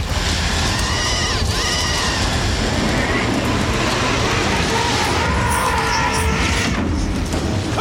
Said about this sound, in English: Here's weird fire sound number two.